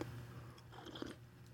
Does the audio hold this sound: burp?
no